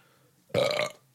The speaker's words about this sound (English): I burped.